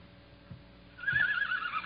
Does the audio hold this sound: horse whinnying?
yes